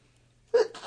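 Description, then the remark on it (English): A single sharp sneeze bursts out after near silence, loud, with a brief breathy tail trailing off. “Bless you. Thank you.”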